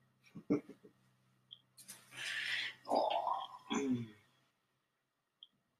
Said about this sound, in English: Oh, growling, keep it here, little.